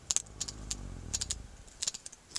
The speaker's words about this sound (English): that clicking is coming from a sperm whale as it removes black cod from a fishing line. It's a prized catch, and all that pilfering costs fishermen.